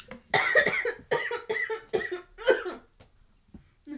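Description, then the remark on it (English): A loud fit of harsh coughing or sneezing, about five or six rapid bursts in a row, then it trails off into quiet with a few faint breaths. No one speaks. “Bless you.”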